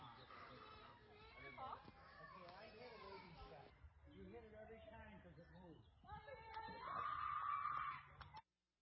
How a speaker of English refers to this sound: Now, the loudest crying, you hear the little kids screaming,